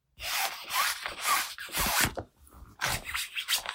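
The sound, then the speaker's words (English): Something rubbing against a balloon: a series of loud, scratchy, squeaking strokes in uneven bursts, with a short pause before the final few, and no voices. “The mayor said, it sounds like something's rubbing against the balloon, but I can't see anything.”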